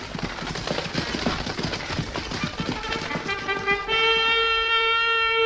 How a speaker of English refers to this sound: Look, the carriage is turning into this road. We're riding towards the castle.